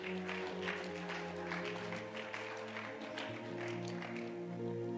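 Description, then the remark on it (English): An audience claps steadily for several seconds, a dense patter of hand claps over sustained keyboard or organ chords. No one speaks over it. “I thought you'd be clapping.”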